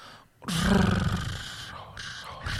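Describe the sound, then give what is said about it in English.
A person imitates a cat's purr as a signal in a TV theme song guessing game. It is a loud, rough, rolling rumble that starts after a brief quiet moment and continues steadily for about two seconds, with slight dips in strength. “Do you want to keep doing your purr?”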